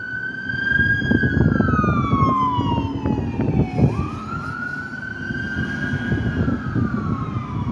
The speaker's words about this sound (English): You hear that siren?